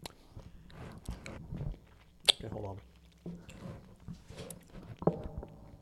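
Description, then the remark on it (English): Crunchy chewing of candy right into a microphone, with loud, crackling bites and moist mouth noises, a couple of sharp crunches standing out, while a person briefly speaks between mouthfuls. “That's some ASMR, eh? Yeah, in the mic, crunch.”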